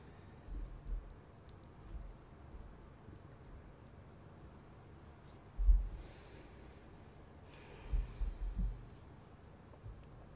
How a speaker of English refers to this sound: I was yawning like crazy so much.